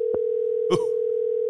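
A steady, unbroken telephone dial tone hums at a mid-low pitch as a call is placed through Siri, interrupted only by a faint click early on and a brief, scratchy burst of noise partway through.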